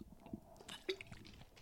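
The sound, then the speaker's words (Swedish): Quiet mouth sounds of someone sipping a gin and tonic: a few soft wet slurps and a small gulp near the middle, with no talking. “Jag tar en klunk gin och tonic.”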